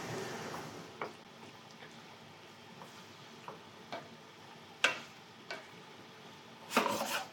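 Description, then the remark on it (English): Water simmers quietly in a skillet on low heat with steam rising, a soft, steady sizzle broken by irregular light clicks and scrapes of stirring, ending in a louder scraping burst. No one speaks. “I mean, a touch more water. And you're on low heat, but there's definitely like steam coming from the pot, from the skillet.”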